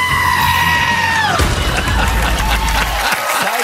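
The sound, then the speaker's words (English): A long, loud goat bleat holds a steady nasal pitch, then drops sharply and breaks off, followed by a noisy burst of crowd-like shouting. “The Bachelor, fall in love with the goat.”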